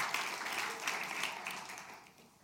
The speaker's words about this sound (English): They get to go first in line. You get clapped for.